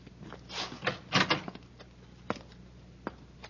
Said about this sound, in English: Hey, I think I hear somebody in this room, sir. I'll open the door.